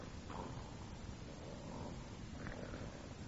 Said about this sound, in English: Hey, listen to that. I didn't know there was a sawmill on the premises. What? That snoring. There's only one man I ever heard snore like that.